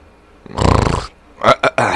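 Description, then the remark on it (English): A voice makes a loud, rough guttural growl lasting about half a second, imitating the Predator alien creature, followed by a few sharp, raspy clicking and hissing bursts. “That was Predator.”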